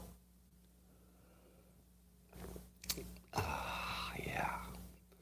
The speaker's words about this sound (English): It's a simultaneous sip. It's the dopamine hit of the day. It's what everybody wants. It's happening now. Go.